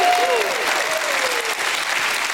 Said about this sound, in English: Can anybody give God a hand clap and a shout of praise?